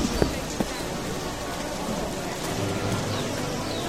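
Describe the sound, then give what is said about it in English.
Steady rain pours down across a broad hiss, with a few sharper drips and taps near the start, moderately loud throughout. “We offer you words of thanks and praise, O Ashwari, for your sacrifice which brings the rain.”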